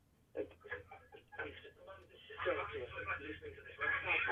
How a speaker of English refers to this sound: could you turn the radio off, please?